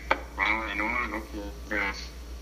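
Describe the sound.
A voice over a call line comes through garbled and choppy, breaking into short fragments separated by brief dropouts, with a steady low electrical hum running underneath throughout.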